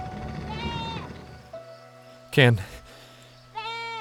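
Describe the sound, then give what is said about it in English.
Goats bleat twice, a wavering cry early on and another at the end, with a sudden loud, harsh burst of noise in between over a low steady background hum. “What are you doing with these goats?”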